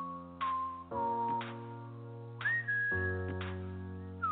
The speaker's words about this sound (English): Oh boy, the whistling. The whistling.